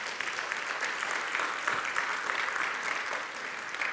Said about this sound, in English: Come on, that's a good word. Can you give him a great round of applause?